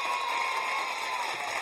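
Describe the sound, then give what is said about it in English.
A burst of applause for a show's caller of the week, a dense, steady wash of many hands clapping at an even loudness for under two seconds, with no voices heard over it. “Give him an applause, and the kids are happy about that being cleared up.”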